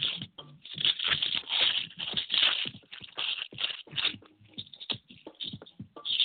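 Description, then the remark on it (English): Paper crinkles and crackles as it is crushed up a little before rolling, a dense run of sharp, irregular rustling bursts lasting several seconds with no voices. “You grab the paper, you crush it up a little.”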